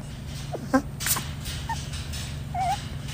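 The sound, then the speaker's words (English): A bat lets out a few brief, high-pitched whimpers and squeaks while yawning, a short cry followed by a faint chirp and a wavering squeal, over a steady low hum. “This is a video of a bat yawning, then covering its”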